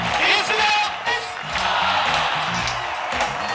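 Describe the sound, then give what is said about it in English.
A large, energized crowd of Al Gore supporters at a Florida rally during the 2000 election campaign cheers loudly without pause, at 73 degrees in the middle of the night, a dense roar of many voices punctuated by scattered whoops and shouts that keep rising and falling throughout. “It was 73 degrees in the middle of the night, and Gore's crowd was energized.”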